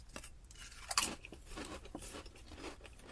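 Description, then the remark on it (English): Crisp crunching of thin-cut Uncle Ray's potato chips being chewed, a run of sharp, bright crackles with one louder snap near the start, continuing steadily and fairly quietly with no talking. “What separates Uncle Ray's from a lot of chip brands is the thin cut.”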